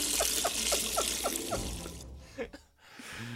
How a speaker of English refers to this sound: I literally cut out 40 seconds of pissing. Because it's so long, that scene.